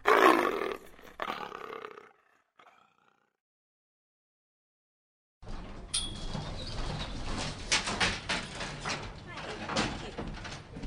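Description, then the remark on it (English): A leopard gives a loud, rough roar lasting a couple of seconds, then a hush, followed by a dense, noisy stretch of growling and rumbling commotion. “I don't want anything to do with the leopard.”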